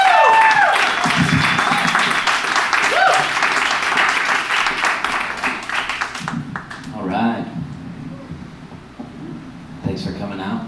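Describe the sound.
A crowd's loud, dense applause with scattered cheers and whoops for a comedian from Nashville coming to the stage runs for about six seconds, then dies down as a man starts talking over the last few claps.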